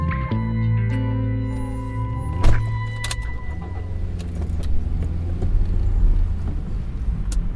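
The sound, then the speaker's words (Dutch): Steady low engine drone and road rumble from inside a moving car driving to an animal shelter, the engine pitch shifting early on, with a brief rattling clatter partway through and no voices. “Een aflevering waarin we niet beginnen met een wandeling, maar met een autorit op weg naar het asiel.”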